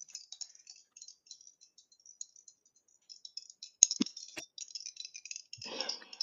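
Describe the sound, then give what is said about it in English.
A voice imitates rattling dice with quick, crisp clicking and clattering mouth sounds, sparse at first and then denser, with a couple of sharper pops and a breathy rush near the end. “Can I get some dice sounds from your mouth?”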